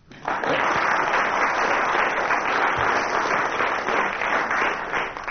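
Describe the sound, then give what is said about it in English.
Sustained applause by commissionaires, a dense, steady patter of many hands clapping at even loudness for several seconds, with no voices standing out. “The commissioners clapping there had misled us.”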